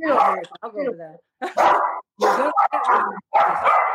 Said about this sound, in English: Whose dog is that? Sorry, that's mine going nuts. He doesn't like the rock story.